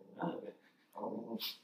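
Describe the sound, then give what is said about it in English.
A dog named Albert gives two short, harsh barks about a second apart, fairly quiet, with a faint high-pitched squeak right after the second bark. “Yeah, he barks at ghosts.”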